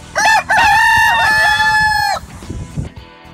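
A rooster gives one loud crow with a short opening note and a long sustained call that breaks off after about two seconds, followed by a faint low rumble.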